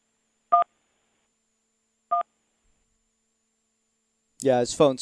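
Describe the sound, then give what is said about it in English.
A phone line drops out into near silence, broken only by two short, clear electronic beeps spaced well apart, before a man's voice starts talking near the end. “His phone's cutting out.”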